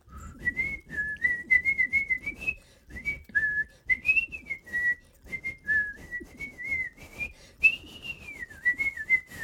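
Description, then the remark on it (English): Mickey Mouse whistles a bouncy, wavering tune in short phrases in the Disney cartoon Steamboat Willie, clear, over a lively orchestral background with no talking. “So they paired Mickey with sound and Steamboat Willie happened, which is, of course, the infamous whistle.”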